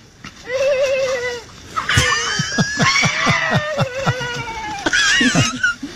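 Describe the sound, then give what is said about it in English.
An elephant giggling: a wavering high call, then a quick run of rhythmic, chuckle-like pulses and bright squealing bursts, loud and fairly continuous over about six seconds. “An elephant giggling. Not laughing, giggling.”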